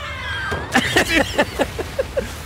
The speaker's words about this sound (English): I feel bad for that elephant. It's like, hey, what are you doing, man? There's a ramp. Go on the ramp. And the elephant cries out again.